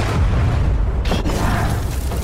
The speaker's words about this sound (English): Close to the blast, windows shattered, timber snapped, doors flew from their hinges, people were knocked flat. Further away, the town shook and shook and wouldn't stop.